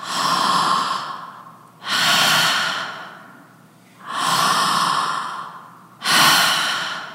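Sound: voice imitating heavy breathing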